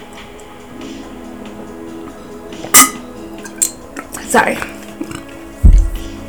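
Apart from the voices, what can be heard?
taking a sip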